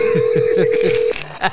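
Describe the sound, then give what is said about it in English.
A telephone rings with a steady electronic tone over quick repeating pulses, then cuts off abruptly after about a second. “Hold on, it might be a gig.”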